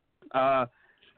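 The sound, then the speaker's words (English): A single short, voiced throat clearing by a radio host trying to cough off air, fairly loud, lasting under half a second, followed by quiet room tone. “Sorry, trying to cough and get not on air.”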